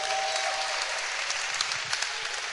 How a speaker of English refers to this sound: Wow. Clap your hands for that point.